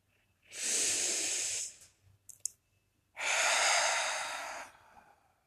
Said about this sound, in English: I am alive. I am breathing.